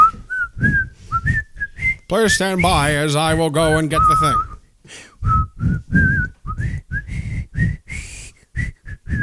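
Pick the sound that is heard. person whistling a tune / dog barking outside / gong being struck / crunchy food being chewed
person whistling a tune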